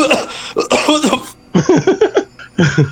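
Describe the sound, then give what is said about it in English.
A voice imitates a man on his knees retching and coughing to clear his nostrils of a hideous smell: a run of harsh, throaty gagging bursts, a brief pause, then a few more hacking coughs. “He falls to his knees and just starts wrenching and coughing, trying to clear his nostrils of this hideous smell.”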